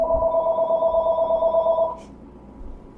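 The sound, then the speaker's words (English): A telephone rings with a steady, trilling electronic tone that runs for about two seconds, then cuts off abruptly, leaving only a faint low rumble. “You have it on. It won't ring.”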